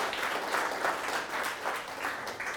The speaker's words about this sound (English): You guys are sports, man. I'm telling you. Amazing. Give them a big clap. Isn't that awesome?